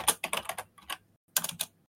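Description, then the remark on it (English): Rapid clacking of keys on a computer keyboard as someone types a link into notes: a quick burst of keystrokes, a short pause, then a few more taps, fairly quiet with no talking. “Typing it, putting it in now.”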